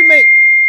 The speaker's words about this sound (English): What was that? You got something in the microwave? That was Adam Feller's. That was Adam Feller's texting me.